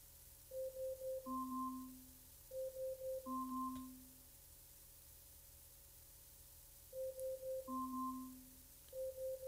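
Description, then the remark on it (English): An Alexa smart speaker alarm, set for 10 seconds, sounds: quick runs of soft electronic beeps followed by a longer two-note tone, repeating in three cycles with short silent gaps between them. “And as you can hear, the alarm has going off.”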